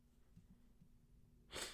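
A single short, breathy nose sniff comes near the end after a stretch of quiet low hum. It is fairly soft, with no talking.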